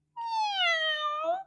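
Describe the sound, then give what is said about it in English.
A single drawn-out meow, loud, sliding gently downward in pitch, sung by a human voice imitating a cat. It rings out alone for over a second with nothing else around it. “Let me hear some cats. Meow. Meow.”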